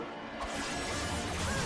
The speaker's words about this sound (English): Let me show you. White Drago sword. Laser arrows.